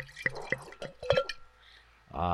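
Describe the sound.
White wine glugs and trickles into a glass in a few bubbling, dripping bursts, fairly clear, before a person starts talking at the very end.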